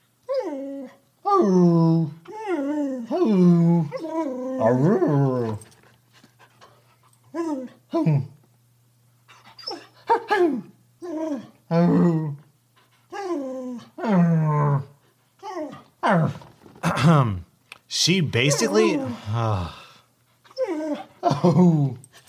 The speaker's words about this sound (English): Dog.